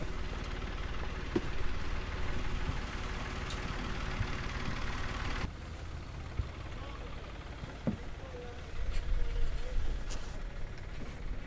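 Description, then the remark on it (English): A boat engine drones steadily throughout as the boat heads out at night in the rain, a dense low rumble with constant hiss and churn, dropping slightly in level partway through before swelling again near the end. “So here we are now, heading out on the boat.”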